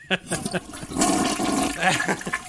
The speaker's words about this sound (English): That's a long flush, man. Yeah, God. What happened there?